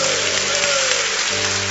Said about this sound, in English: If you are clapping, you are clapping for Jesus.